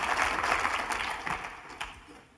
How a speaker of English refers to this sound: If you believe that, will you give the Lord a hand clap of praise today?